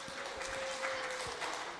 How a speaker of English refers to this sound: I watched the New England Patriots crush the Pittsburgh Steelers in football. Yeah, you can clap to that one.